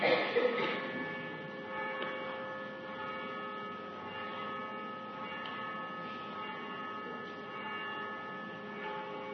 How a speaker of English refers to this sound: Wait for the bell. Without the mic, it's hard to compete with the bell.